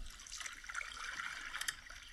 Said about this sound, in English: That's my app that reminds me to drink water, which I have not done in days.